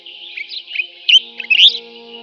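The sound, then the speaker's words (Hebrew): Bright, rapid bird chirps and trills flutter in a high register over a soft, steady tonal background, with a few louder bursts toward the middle and end; no one speaks. “פרק מרתק לדעתי, עם הרבה תובנות וגם עם ציוצי ציפורים.”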